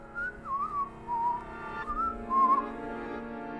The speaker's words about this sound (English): is just whistling tunelessly to himself, like, doo.